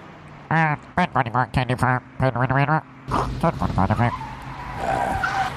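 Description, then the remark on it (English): A voice imitates car tires skidding with a run of choppy, squealing vocal bursts, then a longer hissy, screeching skid that trails off. It is fairly loud. “Give me some car... Like, it sounds like we're outside.”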